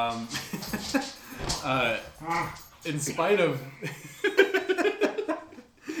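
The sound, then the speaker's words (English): Dogs play-fight under a table, trading whiny yelps, grumbling growls and high squeals in quick, uneven bursts, with human voices and a bit of laughter mixed in. “Y'all, if we seem a little distracted, it's because there is an active dog battle going on under the table that we're podcasting on.”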